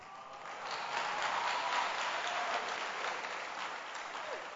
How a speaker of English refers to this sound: Now, you can even hear how they are clapping. Yes. Because it is not a small thing.